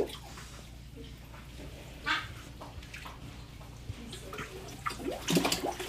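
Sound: water splashing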